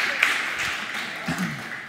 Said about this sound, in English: Hey, you guys, real quick, I want y'all to give yourselves a huge round of applause because we've got a crowd here on Father's Day. Y'all give yourselves a big round of applause.